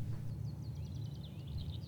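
Birds chirping in a quick run of short, high-pitched notes, fairly soft, over a steady low rumble, with no talking.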